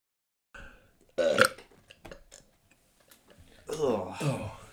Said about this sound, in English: And I farted. Did you? I did.